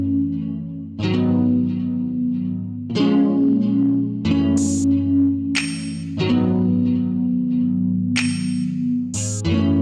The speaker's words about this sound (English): This is the song that's on my mind. It's by …, ….